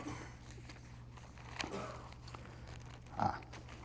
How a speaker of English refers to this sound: In Hebrews chapter 4, I hear some pages rustling, so that's good, that's good.